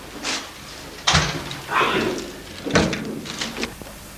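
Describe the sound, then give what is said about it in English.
A door is pushed shut, landing with a solid thud, followed by a second knock and some handling rattle, with faint voices murmuring in the background. “Shut the door.”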